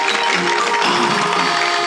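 Light, scattered applause forms a steady, hissy patter of claps for about two seconds, fairly loud throughout with no single clap standing out and no voices.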